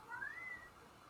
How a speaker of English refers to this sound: My cat's still yelling about something. I don't know what.